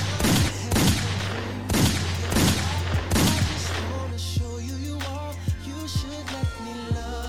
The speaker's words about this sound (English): I need some gunshots.